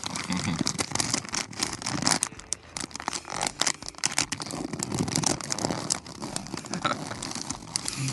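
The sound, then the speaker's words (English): Sheets of legal pad paper being crinkled and crumpled, a steady, dense stream of crackling and rustling lasting several seconds with no one speaking. “This is good sounding paper,”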